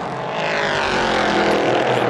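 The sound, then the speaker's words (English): Race car engines roar loudly and continuously at high revs, the whine rising and falling slightly as the cars pass at speed, among them car number 98, the lead Ligier in sixth position, looking for a way past car number 20; no voices. “This 98 car in sixth position, the lead of the Ligiers, and looking for a way by the number 20 car.”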